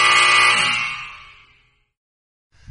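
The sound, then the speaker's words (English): A loud, harsh quiz buzzer sounds for about a second and a half, steady and nasal, then fades out into silence before a faint noise starts at the end. “But you can just buzz it anyways.”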